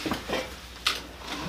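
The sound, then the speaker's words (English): A pot gets bumped and clatters briefly, with one sharp metallic knock standing out among a few lighter rattles and scrapes, and no voices. “Almost knocked over the pot.”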